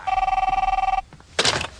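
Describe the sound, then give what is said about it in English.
A telephone bell rings loudly with a rapid, trilling electronic warble for about a second, then cuts off, followed by a brief burst of noisy rustling. “So let's go ahead and see what he does here, because of course he does call.”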